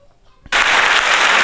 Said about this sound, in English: Living your life. Give her claps.